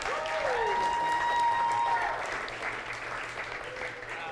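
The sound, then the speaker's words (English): A church audience applauds the staff steadily, a dense wash of clapping with a few whoops and cheers riding on top, holding strong for about two seconds before easing slightly. “So let's give the staff a big round of applause.”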